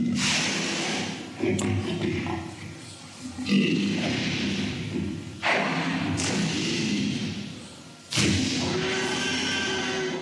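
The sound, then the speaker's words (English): A T-Rex roar built from layered animal sounds, including a baby elephant's high-pitched scream as part of the main roar: deep, rumbling growls with a harsh, raspy upper layer, surging loudly in about four bursts over ten seconds. “that baby elephant is part of the major roar”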